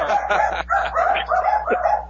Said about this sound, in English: Watch out, the dogs are about to bark.